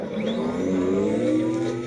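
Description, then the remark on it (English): The shield recharge sound from the Halo video game: a steady electronic whine with layered tones that slowly climb in pitch for about two seconds, fairly loud and unbroken, with no voices. “It's your shield regen.”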